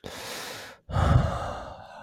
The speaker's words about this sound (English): Hey, you back in the studio with that blue Yeti. I see that. I am. Listen to me breathing.